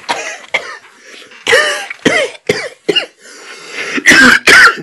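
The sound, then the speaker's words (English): A voice imitates a string of harsh, hacking coughs of sick people, about eight bursts in uneven rhythm, loud, with the final two coughs the strongest and most forceful. “And then these Africans ain't even coughing, bro.”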